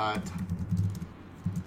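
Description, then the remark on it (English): Rapid, uneven clicking of someone typing on a computer keyboard, fairly quiet, over a low background hum with faint murmuring. “Are you typing?”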